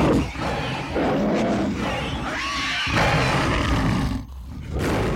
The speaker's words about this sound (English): Okay, you hear in the distance, good deal in the distance, the definite hooting growl of owl bears on the hunt.